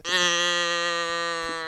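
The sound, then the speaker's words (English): A person gives a single loud, drawn-out imitation of a cow mooing, one steady, buzzy, low-pitched note held for well over a second with no other sounds around it. “You're going to get mooed right out.”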